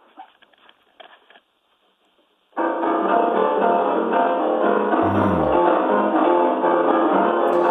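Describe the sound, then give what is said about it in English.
After a few faint taps and a short silence, a ragtime piano tune bursts in loud and steady, heavily altered to suggest how dogs and cats would hear it, so it sounds dense, smeared and harsh, with a brief low swooping tone midway. “Dogs and cats, if they came into the room, they'd probably hear something like this.”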